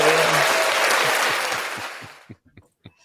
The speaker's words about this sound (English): you need to be quick and with the applause button there when he said only 5 games to go in the season.